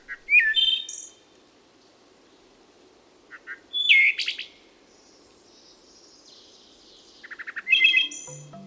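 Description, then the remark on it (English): Three phrases of wood thrush song, a shy bird of forest shadows, each a flutelike, fluting run of notes ending in a bright trill, spaced a few seconds apart and heard clear with no voices. “They chose the wood thrush, a shy bird of forest shadows with a voice approaching high art.”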